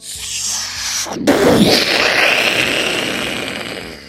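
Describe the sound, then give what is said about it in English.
A sharp burst about a second in erupts into a loud, crackling roar that slowly fades, like a firework exploding, with a faint high whistle drifting over the rumble. “wound the Christmas tree around through the sky and zoomed past all the fireworks.”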